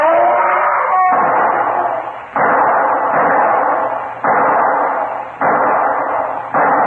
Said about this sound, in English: What was that? Shots, Inspector. Pistol shots.